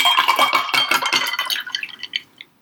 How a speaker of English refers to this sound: Once it is fully shaken, then you pour the whole thing into a prepared glass with a sprig of rosemary, a cherry, and a slice of orange.